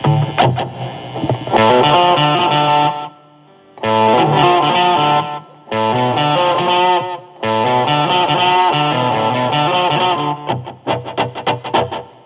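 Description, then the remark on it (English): An electric guitar plays chords through a slow echo with lush reverb, each phrase swelling and trailing off, with brief gaps before the next strums; no voices. “and I generally don't go any I don't go any more of a slower delay than this. Let me turn the reverb down.”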